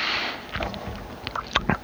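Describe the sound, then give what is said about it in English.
Crunchy chewing of Cinnamon Toast Crunch cereal with cold milk, a handful of irregular wet crunches and bites over a steady low hiss, with no talking. “Oh, I enjoy that first bite of Cinnamon Toast Crunch so much that maybe I'm just hungry, but that cold milk on that crunchy Cinnamon Toast Crunch, that first bite, oh, when it's the most sugary and delicious.”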